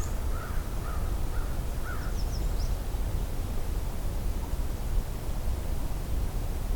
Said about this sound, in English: Ooh. It was a really croaky call from either a common raven or an American crow. If I were to guess, It was a raven. But I have heard crows make strange sounds like that before.